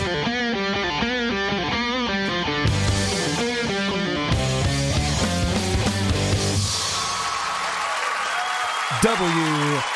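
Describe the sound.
A short burst of audience clapping and applause rises after a loud, distorted musical intro, filling a couple of seconds before a voice cuts in at the end.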